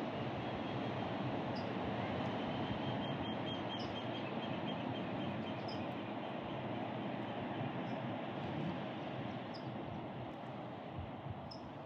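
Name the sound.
ocean waves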